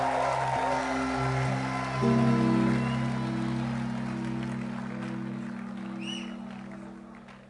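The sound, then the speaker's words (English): A church audience gives a clap offering to the Lord for people from Montserrat, a dense, steady wash of applause over sustained keyboard chords, the clapping slowly thinning and fading toward the end. “Give the Lord a clap offering for these wonderful Montserratans.”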